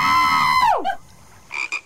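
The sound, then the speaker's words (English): A frog croaks in a played video about how frogs vomit: a long, buzzy tonal call that bends sharply downward, then after a short pause two quick, clipped croaks. Fairly loud, with no talking. “See, I wonder if there's a video. Hmm. How frogs vomit.”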